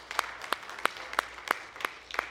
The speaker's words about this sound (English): Let's give him one more hand clap of thanks if you wouldn't mind.